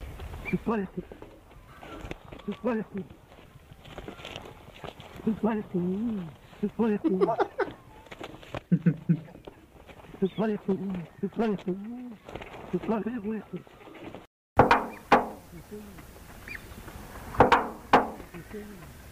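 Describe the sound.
An Australian musk duck gives a series of muffled, speech-like phrases, imitating a distant human voice saying "You bloody fool," with short pauses between bursts and a few sharper, louder calls near the end.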